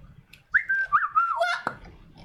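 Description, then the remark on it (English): A fairly loud whistled bird call from a woman's voice as a Tourette's vocal tic, one warbling, rising and falling phrase lasting about a second, ending with a short sharp click before quiet background. “She does that bird signal thing.”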